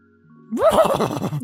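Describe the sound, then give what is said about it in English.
A human voice mimics a horse's whinny, a quavering, pitch-wobbling neigh that rises and trembles for about a second, fairly loud, with no other speech. “I switch to horse and I start speaking to him in horse.”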